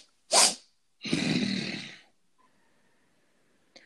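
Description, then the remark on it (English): A person imitates sniffing at the ground with one sharp, breathy snort followed by a longer, rough nasal inhale, loud, with no talking. “He leans down on the ground, which is now sort of like a cobble path, like a gravel path. And he sniffs.”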